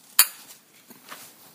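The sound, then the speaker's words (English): A single sharp, bright clink of glasses of adult beverages touching in a toast, ringing briefly before fading, followed by a few faint soft taps and clatters. “We need to take a sip. Clink, clink.”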